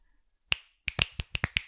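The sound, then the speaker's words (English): Sharp, loud finger snaps: one crisp crack, a short pause, then a quick run of about six more in an uneven rhythm, each a bright, ringing pop with nothing else in between. “I can snap really loud.”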